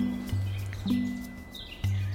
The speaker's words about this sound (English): We kept on hearing Chetty's warbler right in front of us in the reed bed, which is such a bubbly sound